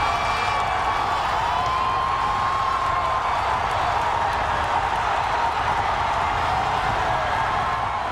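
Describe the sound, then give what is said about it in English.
A massive crowd at Belmont Park in 2015 roars and cheers without pause as American Pharaoh hits the top of the stretch on the way to the Triple Crown, a dense, steady wall of voices at full volume, with a few thin, high tones drifting through the din. “But in 2015, I was in the stands at Belmont Park when American Pharaoh hit the top of the stretch. Here's what it sounded like.”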